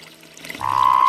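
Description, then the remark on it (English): A Sonoran Desert toad's urine stream splashes into a little creek, beginning abruptly after a faint hiss and continuing as a steady, loud pouring with a sustained mid-pitched ring. No one speaks. “But it certainly has a strong, healthy urine stream. He's in a little creek.”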